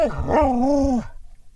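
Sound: dog growling and grumbling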